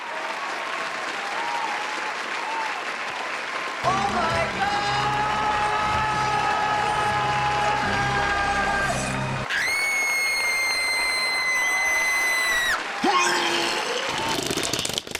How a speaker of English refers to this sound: So, ladies and gentlemen, boys and girls, please give a huge round of applause to our friend, your friend.